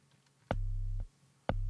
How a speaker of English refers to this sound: Okay, so basic sine wave. I'm going to reduce the drive a little bit. So there's just a basic sine wave.